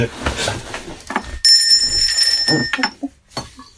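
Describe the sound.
A bright bell rings once and its metallic tone hangs for over a second before fading, with people talking just before and continuing around it.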